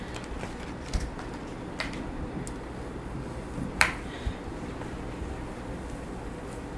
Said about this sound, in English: So that's what I'm doing now. So I'm opening up all the packages of dough.